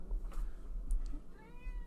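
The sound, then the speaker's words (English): A cat lets out a short meow, with a low background hum and a few soft clicks, no one talking over it. “My cat is saying hello. I heard it.”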